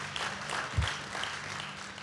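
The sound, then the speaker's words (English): A church audience claps their hands together as a hand clap for the Lord at the end of a sermon, a steady burst of many overlapping claps filling the room at moderate volume, with a low thump partway through and no talking. “Give the Lord a hand clap if you learned something today.”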